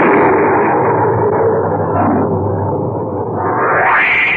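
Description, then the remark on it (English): A tremendous thunderclap rolls out as a loud, sustained, crackling rumble, holding steady for several seconds before surging brighter and harsher near the end. No voices are heard. “Just then, there was a tremendous thunderclap, and the electric lights failed.”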